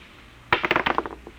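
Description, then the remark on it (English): Dice are rolled for a seven, clattering across a hard surface, a sharp first hit followed by a quick run of about eight bright, tapping clicks that tumble and fade within a second. “do you know what the odds are against my rolling a seven?”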